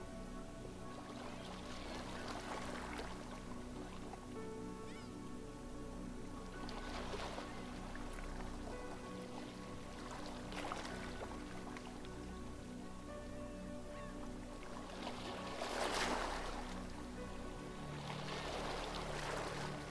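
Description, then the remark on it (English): Sea water sloshes and laps against a boat hull in soft, irregular splashes every few seconds, over a steady low droning hum, with no one speaking. “The color of the sea is neon turquoise, surreal, otherworldly.”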